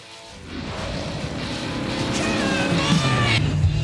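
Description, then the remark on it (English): A car engine hums steadily as the vehicle drives along the road, with a low rumble and rising whine of acceleration, fairly loud throughout. “So they get in the car, they're heading down the road, and we get this clip.”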